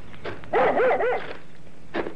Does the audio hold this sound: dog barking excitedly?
yes